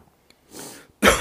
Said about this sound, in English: Oh, excuse me. I coughed right into the mic there. Oh, who would ever? Oh, I'm fighting a little coffee cough.